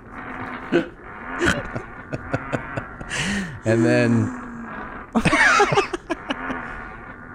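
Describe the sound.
A remixed fart recording: choppy, pitch-shifted bursts, a sustained low buzzy tone, then a harsh noisy blast, cut together with short stuttering fragments and a brief spoken bit.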